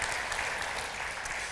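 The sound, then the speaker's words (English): Steady, dense audience applause fills the whole moment, a continuous wash of many hands clapping at moderate loudness with no distinct pauses or voices breaking through. “Yeah, give it a round of applause.”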